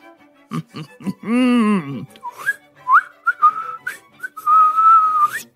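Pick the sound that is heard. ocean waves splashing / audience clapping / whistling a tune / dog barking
whistling a tune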